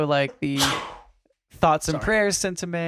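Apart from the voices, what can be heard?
sneeze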